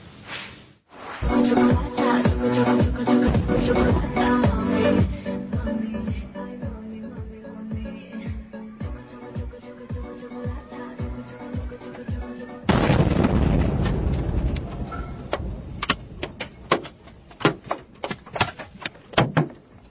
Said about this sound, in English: This is another piece of dramatic footage. Watch it all the way through. There's actually two explosions in here.